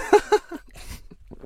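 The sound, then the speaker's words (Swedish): Someone takes a sip of water: two short, soft gulping swallows in quick succession, then a breathy exhale and a few faint mouth sounds. “Jag måste ta en klunk av Jonas Gardell-vattnet här, så att det kanske blir lite kul.”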